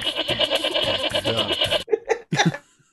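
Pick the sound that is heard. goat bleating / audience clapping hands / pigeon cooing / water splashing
goat bleating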